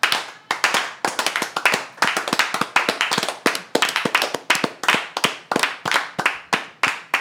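Steady, sharp hand claps repeat at a brisk, fairly even pace for about seven seconds, crisp and loud with no talking over them.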